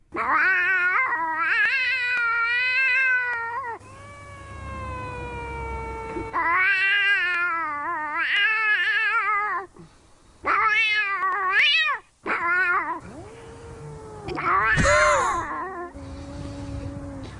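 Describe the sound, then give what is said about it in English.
A man loudly imitates a cat's caterwauling with long, wavering yowls, so convincingly that his own cat answers with softer meows in the background, the two trading cries back and forth. “The loud caterwauling in this clip is being done by a guy who is so good at it that he confuses his own cat.”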